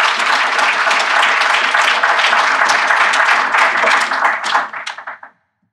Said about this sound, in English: So can we give a round of applause for our guests today? Thank you.